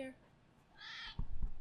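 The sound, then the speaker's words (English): A male cat named Junior purrs into the microphone, a low, rough rumble pulsing in quick succession near the end, preceded by a brief high-pitched, meow-like tonal cry. “He's a purr machine.”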